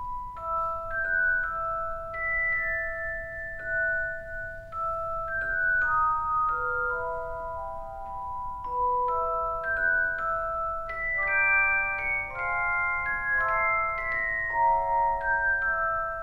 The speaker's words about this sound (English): It sounds like these chimey bells ringing. It's beautiful. And an actual celeste is a keyboard instrument, like a piano, which has hammers that strike bells rather than strings, like a piano hammer would strike.